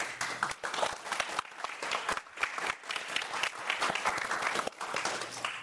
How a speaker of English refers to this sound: Thank you to all of our speakers who are here tonight and sharing your thoughts and your love. Let's give another final round of applause for our speakers.